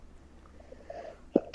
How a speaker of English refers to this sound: Sorry, mate, got a cough.